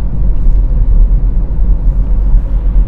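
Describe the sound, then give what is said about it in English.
Steady low-frequency rumble of a car interior while driving on a frosty Saturday morning from Hinckley to Derby, a loud continuous drone of engine and road noise with no speech or distinct events. “Obviously, I'm in a car. There's lots of car noises.”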